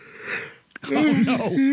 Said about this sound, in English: Oh no! In the middle of the yawn.